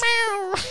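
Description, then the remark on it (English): A single short meow from a cat named Mittens, fairly loud, with a steady tone that drops slightly at the end, heard on its own. “It sounded like a cat.”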